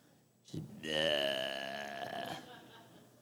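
A single loud, drawn-out belch rumbles for nearly two seconds, deep and throaty with a croaky, voiced texture, alone before trailing off into quiet.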